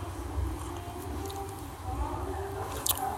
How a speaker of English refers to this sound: Let me take a sip of my mimosa real quick.